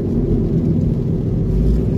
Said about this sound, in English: And I'm in the car. I'm in the car. It's a car episode. So, that's always fun. There's always going to be background noises, clicks, and engine noise and all that kind of crap.